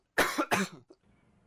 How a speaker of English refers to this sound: I'm going to cough, though.